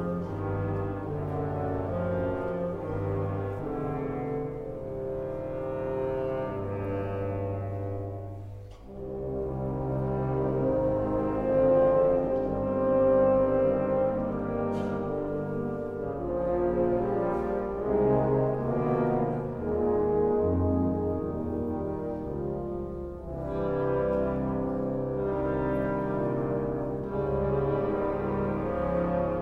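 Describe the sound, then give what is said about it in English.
An intense orchestral symphony passage, one with no hammers used, of dense, sustained low chords and swelling harmonies, briefly thinning out before building again at full strength, with no one speaking. “However, having said all that, the bit I'm going to play to you now from the symphony doesn't involve any hammers at all.”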